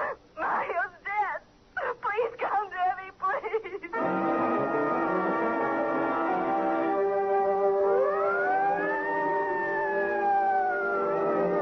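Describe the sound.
Loud sirens wail and swell through the city after a man has died, following a few seconds of voices, their sustained tones rising and falling in long sweeps over a dense background of city noise.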